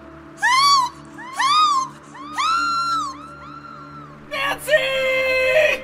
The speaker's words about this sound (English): With ungodly strength, it dragged her out into the dark, snowy night, her cries for help fading into the relentless wind.